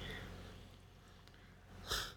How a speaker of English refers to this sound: Sorry, I was yawning because it's like really late.